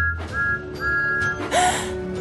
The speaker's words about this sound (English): But Percy was worried. I do hope the animals are okay. Then Percy heard a familiar whistle.